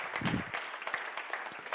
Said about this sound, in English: Somebody clap your hands unto the Lord tonight. Amen.